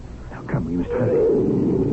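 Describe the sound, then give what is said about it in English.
A deep, rumbling tiger roar swells up after a brief growl and holds steady for more than a second, loud, with no one talking; a tiger called Shere Khan by the locals, hunting in the jungle at night. “Well, that's what the natives call the tiger.”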